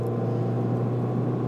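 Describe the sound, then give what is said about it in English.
A steady, heavy engine rumble with a low droning hum holds at a fairly loud, even level as a truck rolls along the road. No one speaks. “Oh, that truck too? Really?”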